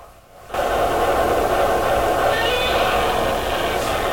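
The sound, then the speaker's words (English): Godzilla's roar bursts in after a brief quiet moment and holds for several seconds, loud, harsh and sustained with a wavering, screeching tone over a rumbling base. “I also just hear him like. Yeah, that's a good roar.”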